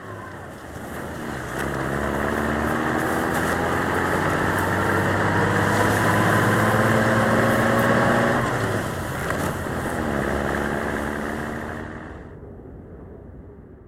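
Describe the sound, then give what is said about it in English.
A pickup truck engine runs steadily and fairly loud on a cold, slow, dark winter drive over snow-covered roads to the town of Wallace, Idaho, its droning pitch climbing as it accelerates, briefly dropping as if shifting gear, then climbing again before easing off near the end. “The ride in the pickup truck from the checkpoint to the town of Wallace was cold, slow, and dark.”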